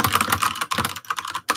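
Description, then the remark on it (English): Fast, vigorous typing on a computer keyboard, a dense stream of loud key clicks with a couple of brief pauses, no voices. “Vigorous typing.”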